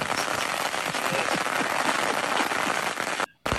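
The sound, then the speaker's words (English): July 4th fireworks in America crackle and pop nonstop in a loud, dense barrage, sharp bangs scattered through the roar, before it drops out abruptly into a brief silence near the end. “Fireworks are loud.”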